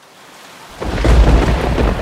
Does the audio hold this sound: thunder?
yes